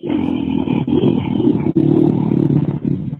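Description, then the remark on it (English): A loud, sustained, raspy roar held for about three seconds, briefly breaking off partway through before continuing at full force, dominant with nothing else audible. “It's patented. Patented roar.”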